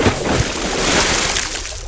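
A heavy plunge as someone falls backwards at full speed into the water, heard as a loud, dense underwater rush of churning, bubbling noise that sustains for the whole moment with no voices.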